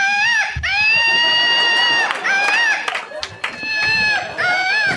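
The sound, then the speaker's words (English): A patriotic Woot Monkey screaming flying toy, launched by pulling its rip cord, gives a shrill, electronic scream that rings out loudly and continuously, with warbling pitch swoops repeating several times over a few seconds, accompanied by background commotion. “I'm going to pull the rip cord that makes them scream.”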